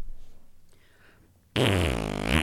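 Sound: voice imitating a fart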